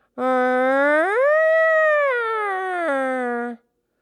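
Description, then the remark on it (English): A single voice imitates a passing siren to show how its pitch changes, holding a steady tone that glides upward, lingers high, then drops back down before ending abruptly; one sustained, loud, harmonic-rich vocal sweep. “Yeah, that's why it changes when a siren comes. I can't really make the sound. I'll try.”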